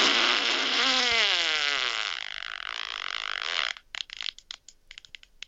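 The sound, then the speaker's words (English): A long, loud fart with a wavering, buzzy pitch that gradually fades, then breaks into a string of wet, sputtering bursts toward the end. No talking. “Yeah, that one's... That was messy. Yeah, just tapers off. Yeah, I was going to say, that one wasn't a fart.”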